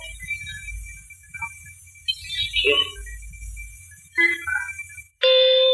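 During a quiz game with an audience, after several seconds of low crowd murmur and scattered noise, a loud, steady bell rings out sharply near the end and keeps sounding, bright, as audience members shout out the answer.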